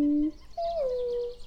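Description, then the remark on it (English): A moorhen squeaks twice: a short, low, steady note, then a brief pause and a longer, higher squeaky call that slides down in pitch, like a rubber squeaky toy. “She sounds a bit like a squeaky toy, doesn't she?”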